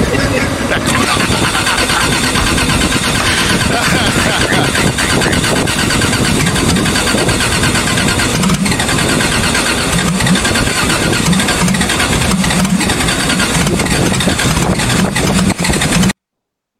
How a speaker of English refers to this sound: if your car doesn't start, don't keep doing this. I think it's cool. Right before it finally kicks over. It may be cool for a video, but don't do this. I drive a 2JZ Subaru.